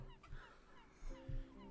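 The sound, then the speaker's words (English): A person makes a short burst of cooing, warbling bird-like noises in imitation of a pigeon, two quick throaty pulses, with no other talk. “I don't speak pigeon. I do!”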